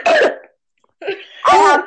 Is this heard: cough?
yes